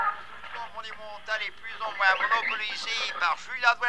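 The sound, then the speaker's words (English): A radio being tuned between stations before landing on a Spanish-language Madrid propaganda broadcast: warbling, sliding whistles and tinny, garbled snatches of voices drift in and out for about four seconds at a steady, moderate level. “Oh, we'll have it tuned in a minute.”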